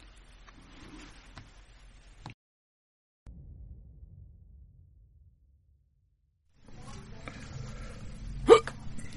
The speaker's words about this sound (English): This was the hiccup that stopped … in his tracks.